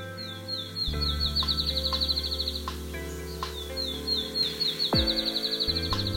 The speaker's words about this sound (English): We're going to find this field sparrow, plus a very talkative eastern towhee and some wood thrush.